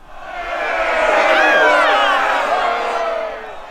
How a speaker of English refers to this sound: I can hear the crowd now, angry voices, shouting and weeping, women weeping. This is dreadful.